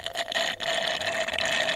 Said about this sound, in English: Number 5, sucking the last few drops from the bottom of a glass.